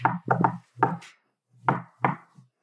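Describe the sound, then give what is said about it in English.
Knocking on a door in the shave-and-a-haircut rhythm: a quick run of raps, a pause, then two heavier, booming thuds to finish, struck first with an elbow and then a fist, with no voices. “And the thing is that I punctuate it by I hit the last two with my elbow and then my fist.”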